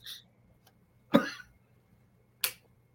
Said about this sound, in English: Oh, got a little cough. Choking on my gum. Oh, okay. Oh no. Excuse me.